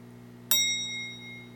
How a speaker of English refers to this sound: What's that? The timer.